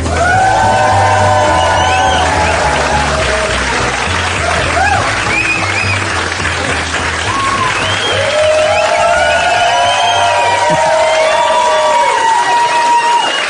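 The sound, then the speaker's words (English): A large crowd cheers and whoops continuously, with rising and falling shouts and high whistling cries layered over a steady roar, loud throughout with no clear speech. “This crowd is massive. Yeah. Sounds massive.”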